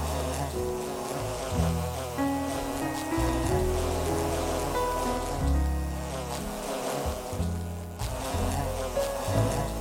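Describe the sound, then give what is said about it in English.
A dense, droning buzz of a bee swarm fills the whole stretch, steady, with the pitch wavering slightly as the insects mill about. No one speaks. “It's just that I've never been on a date with a swarm of bees before.”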